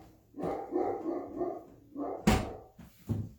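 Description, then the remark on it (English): A dog barks excitedly in a rapid, uneven run of loud barks and yelps, with a sharp, louder bark near the end and no talking. “please hold, my dog is going crazy.”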